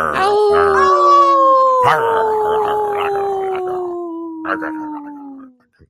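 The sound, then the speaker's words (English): A person imitates a wolf with one long, loud howl, starting high and sliding slowly downward for several seconds before trailing off, with a few brief sounds breaking in. “I did a howl while he's chewing on a bone.”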